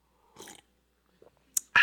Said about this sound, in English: Did you like the slurp? Thanks.